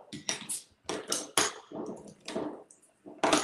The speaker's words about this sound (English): And then this is where we're going to add some more ice before we add the last ingredient, which is the soda water.